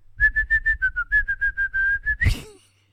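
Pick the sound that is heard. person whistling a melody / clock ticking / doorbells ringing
person whistling a melody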